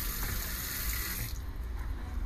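Water runs steadily from a tap into a cup, a continuous rushing pour whose bright hiss dulls partway through as the cup fills. No voices are heard.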